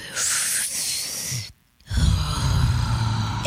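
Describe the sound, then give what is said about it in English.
A voice imitates the loud, heavy breathing of people in a yoga class: a long breathy exhale, a short silent pause, then another drawn-out, raspy breath, with no words spoken. “yoga when you're supposed to focus, but everyone's breathing like sexual. Like, is everyone doing it? Well, you can hear all the breathing, okay?”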